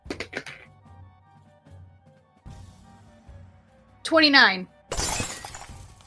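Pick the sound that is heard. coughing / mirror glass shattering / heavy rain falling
mirror glass shattering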